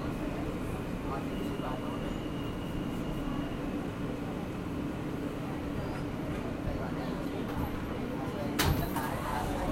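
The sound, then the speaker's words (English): Steady, loud rumble of an F subway train in motion, a continuous low roar with a brief metallic clank near the end and faint, indistinct voices in the background. “I'm just going to take the F train. It's just a really short stop,”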